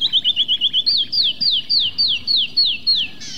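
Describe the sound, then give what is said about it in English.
Wren song: a quick run of about seven short, even chips from a cactus wren, then a slower series of clear, high down-slurred whistles from a canyon wren, heard alone over a low, steady background hiss. “With cactus and canyon wrens, there's a clear sense of how the different habitats, cactus and stone, live in their songs.”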